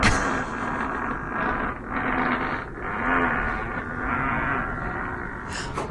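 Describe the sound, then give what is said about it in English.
A long, drawn-out fart buzzes without a break for about six seconds, low and raspy with a wavering pitch and steady loudness, and no voices over it. “That's a 10-second fart?”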